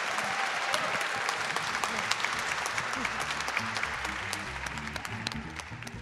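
An audience applauds steadily, a dense wash of many hands clapping at an even loudness for several seconds, with a faint murmur of voices underneath.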